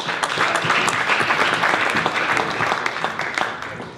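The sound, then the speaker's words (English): A crowd applauds steadily for boxer Gabe Rosado, who is to challenge for the world middleweight title, dense clapping filling the whole stretch at an even, fairly loud level, with a faint murmur of voices mixed into the noise. “Ladies and gentlemen, big round of applause for Gabe Rosado.”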